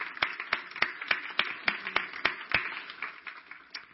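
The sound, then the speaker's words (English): A crowd claps together on Father's Day to honor the fathers present before a sermon, a dense patter of many hands with sharper, evenly spaced claps standing out in a steady rhythm, moderately loud and continuing throughout. “I wonder if we could just clap our hands in a way of showing honor to the fathers in the room.”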